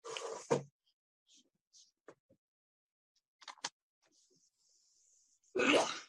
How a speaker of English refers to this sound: I'm sorry, I'm sneezing.